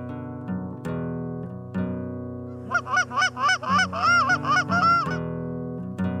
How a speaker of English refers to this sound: Here's some spring snow goose hunting